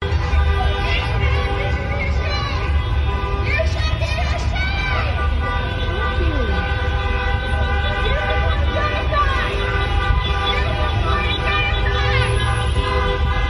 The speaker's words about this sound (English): So you get the general idea there. A lot of honking horns and stuff.